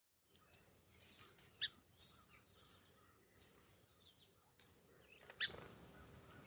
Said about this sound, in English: So that's the song sparrow.